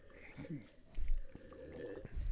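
Quiet sipping from a beer bottle: soft wet slurps and small liquid drips, with a couple of low thumps and a brief murmured voice at the start.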